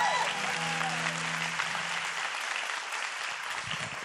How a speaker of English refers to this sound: Let's give our worship team a round of applause and our band.